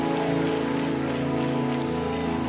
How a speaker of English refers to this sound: Yeah, go ahead on and give him a hand clap. Because it's in you to do it. Because he did something for you.